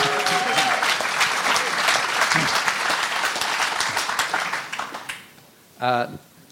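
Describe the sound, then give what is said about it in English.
A dense burst of audience applause, many hands clapping steadily for about five seconds before fading out, followed by a brief spoken voice. “They clapped.”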